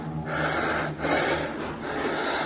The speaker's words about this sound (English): The man is breathing heavily and he looks around his apartment and he just grabbed his phone and is streaming live on Instagram. And as he catches his breath, he switches from selfie mode and he starts filming a man on the floor.